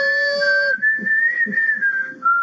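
A man, unable to whistle, lets out a long, high, whistle-like "woo," held steadily for a couple of seconds, with faint low murmuring underneath.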